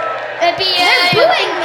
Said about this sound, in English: They're booing me. No, it is the audience,